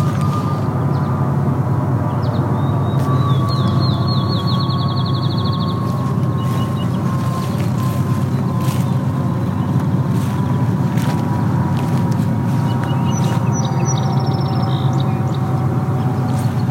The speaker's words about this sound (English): There's also more airplanes here, so this is... You can now hear some airplanes.